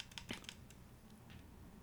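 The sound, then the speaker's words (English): A few quick, light clicks in quick succession, like a mouse button being pressed to unsubscribe from emails, followed by quiet room tone. Soft, with no one talking. “Click here. Unsubscribe. Right here. I'm clicking.”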